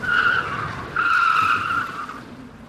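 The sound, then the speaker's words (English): A loud, high-pitched screech of car tires skidding under hard braking, in two close bursts: a short squeal followed by a longer one that fades out, with no talking. “That means I start putting on the brakes.”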